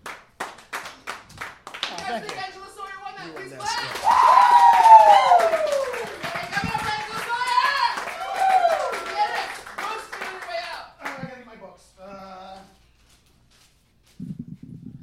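An audience breaks into sustained, loud clapping mixed with cheers and whoops, swelling in the middle, then thinning to scattered claps before fading out.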